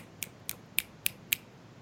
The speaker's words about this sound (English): That's my clap, but in snap form.